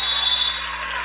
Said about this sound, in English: And this Cougar crowd is on its feet. A standing ovation for the Lady Cougars as they head to the bench.